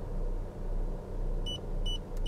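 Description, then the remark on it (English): A car engine rumbles low and steady throughout as the driver starts up the car, and two short, high electronic beeps sound close together near the end, followed by a faint click. No one speaks. “Okay, so I'm starting up the car here. You know, you're going to hear a little beep.”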